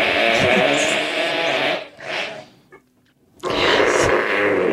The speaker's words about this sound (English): He's farting on a pie. Of course he is.